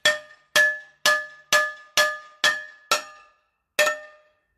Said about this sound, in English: No, I'm just banging a hammer on a frying pan. That's all I'm doing.